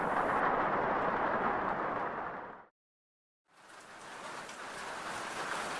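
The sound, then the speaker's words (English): Steady, dense rain pours down in a continuous hiss, drops out to silence for a moment, then returns with a brighter, lighter patter. No voices. “The boys were also stuck in their huts, waiting for the rain to be done.”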